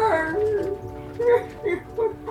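A creature called a squonk weeping and whimpering: a string of wavering, whiny cries that rise and fall in pitch, coming in several short sobbing bursts at moderate loudness with no talking.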